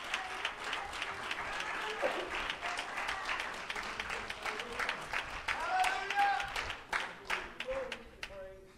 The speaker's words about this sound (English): Can you give the Lord a hand clap of praise as you're seated today?